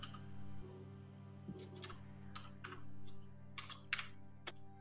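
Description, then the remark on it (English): Quick, light keystrokes clatter on a computer keyboard in short irregular bursts over a steady low electrical hum with no voices. “You can just hit up on your keyboard and it will populate the previous thing you typed.”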